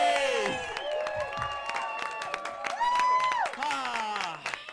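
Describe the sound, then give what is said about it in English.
Steady audience applause with sharp scattered claps under loud, sustained cheering and whooping voices, keeping an even intensity for about five seconds. “And a big round of applause for the writer of the OC”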